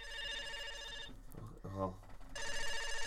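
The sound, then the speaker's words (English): A telephone rings over the line during an outgoing call to a phone number pieced together from numbers David Harbour posted on Instagram, a steady electronic ring tone that stops while someone briefly speaks, then rings again in a second loud burst. “This week on Instagram, David Harbour was posting numbers, a new one each day, and when you put them all together, it's a phone number. So I'm gonna call it. Right now.”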